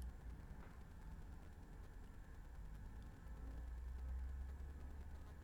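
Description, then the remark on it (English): A car rumbles by outside, a faint low drone that swells slightly toward the end before easing, with a quiet hiss of room noise and no talking. “Hear that car?”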